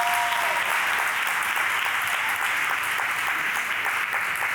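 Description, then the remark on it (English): A crowd applauds steadily, a dense wash of many hands clapping at a constant, fairly loud level for several seconds with no voices on top. “Yeah, that's a better place for you to clap.”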